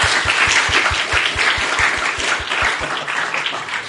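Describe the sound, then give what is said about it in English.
Steady applause from an audience for the day's speakers, a dense wash of many hands clapping at a fairly even loudness, with a regular low thumping pulse running underneath throughout. “And let's give a round of applause for all of our speakers, everybody today who had a part.”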